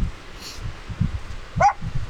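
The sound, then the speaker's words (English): A dog gives one sharp bark outdoors after a faint higher yelp, over a steady low rumble of wind and movement. “listen to Eva bark all the time”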